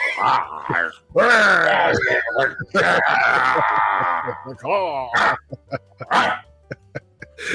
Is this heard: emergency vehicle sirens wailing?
no